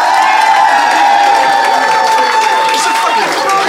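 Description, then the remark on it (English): The live Phoenix audience of about 120 people cheers and claps loudly and continuously, applauding to vote for the winning side of a flatshare dispute, with whoops and shouts layered over sustained applause without a break. “So if you think Marcel and Ben, and therefore Mark, won the day, applaud now.”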